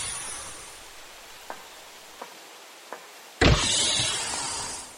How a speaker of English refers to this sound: Stand by for egress. Still standing by. You are cleared for egress. Door opening.